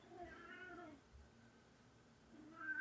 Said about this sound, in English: I hear a cat agreeing with us. That's the cat being like, it's dinner time.